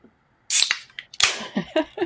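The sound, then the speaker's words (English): A sharp metallic crack of the tab on a can of San Pellegrino Clementine and Peach sparkling water giving way, followed by a bright hissing fizz of escaping carbonation, then a second burst of fizzing and a few soft, lower sounds. “I'm going to do the same thing with my sparkling water.”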